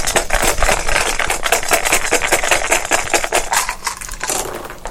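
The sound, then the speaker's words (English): A handful of dice rattles and clatters, a dense stream of sharp plastic clicks lasting several seconds before easing off slightly at the end, with no talking. “Too many dice. Do it better this time.”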